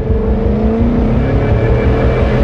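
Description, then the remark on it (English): An old truck's engine roars steadily, its low rumbling tone climbing gradually as it speeds up as fast as it can go, with no voices over it. “I sped up and I went as fast as I could in that old truck.”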